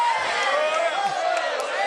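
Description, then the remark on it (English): A crowd of young voices shouts and cheers together in a dense, steady roar, overlapping whoops and yells holding loud throughout with no single voice standing out. “We can't have these young people shouting like this.”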